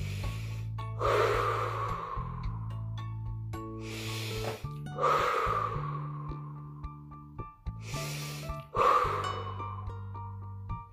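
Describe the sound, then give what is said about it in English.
Three slow, deep breaths taken as a guided relaxation exercise, each a long airy inhale flowing into an exhale, spaced a few seconds apart, over a soft sustained musical drone. “Secondly, I invite you to take some deep breaths in and out.”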